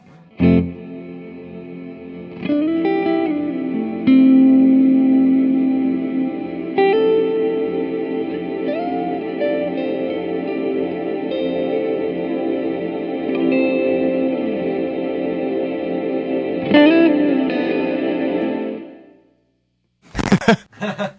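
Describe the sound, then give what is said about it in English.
Sustained instrument notes wash through a small plate reverb for about twenty seconds, the dense shimmer holding steady before cutting off abruptly into silence, followed by a brief noisy burst. “We're going to bring it to a small plate, and then Ian's going to hold it down for us, and you'll just hear what happens to the reverb.”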